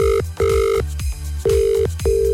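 An outgoing phone call ringing: a steady electronic ringback tone repeating in short bursts with brief gaps, fairly loud and close, with no voices.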